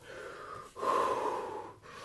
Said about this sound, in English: Hold on, I have to breathe. I forget to do that sometimes.